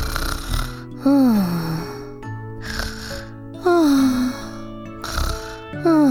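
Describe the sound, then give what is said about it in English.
Exaggerated snoring of a sleeping king repeats in a steady cycle, about three times: a rough, rasping inhale, then a whistling exhale that slides downward. It is fairly loud, with no talking. “The king yawned and fell asleep.”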